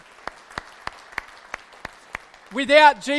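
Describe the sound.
An audience claps in a steady, even rhythm, eight sharp claps about a third of a second apart over a low crowd murmur, then a voice rises loudly as the clapping ends.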